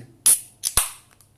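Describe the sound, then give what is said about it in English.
A beer can cracks open: a few sharp metallic snaps and a bright fizzy hiss that fades over about a second, with a couple of faint clicks after. No one speaks. “Opening another brewski.”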